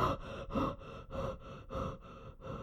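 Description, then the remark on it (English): A person pants heavily in deep, slow, rhythmic breaths, about six loud huffs, imitating the panting of a Great Dane. “And now panting like a Great Dane might pant.”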